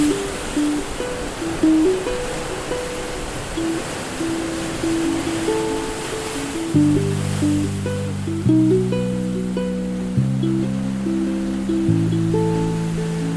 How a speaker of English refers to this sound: Let's sit here and watch the moonlight dancing on the surf.